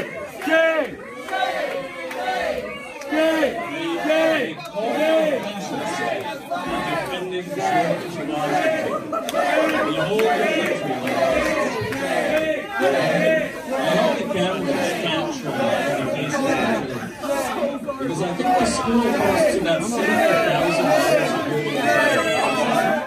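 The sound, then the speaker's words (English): A large crowd of students leaping to their feet, shrieking and shouting over one another, including shouts of 'shame' and 'fascist', a dense, loud, continuous wall of overlapping voices with sharp high cries rising above the din. “So it's hard to hear over the shrieks and the shame and fascist and all this”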